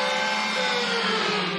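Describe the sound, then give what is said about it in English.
A loud, steady race car engine whine like a NASCAR race track, with a buzzing, harmonic roar whose pitch sinks slowly over under two seconds, as if the car is speeding past. It comes from a voice mod that was meant to sound like cheering. No voices. “I was going to say it sounds like a race car track.”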